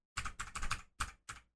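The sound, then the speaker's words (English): Typing on a computer keyboard: several quick bursts of clattering keystrokes with short pauses between them, and no one talking. “Sorry, my keyboard's being dumb.”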